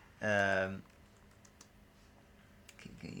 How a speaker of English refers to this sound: Chris is basically typing away.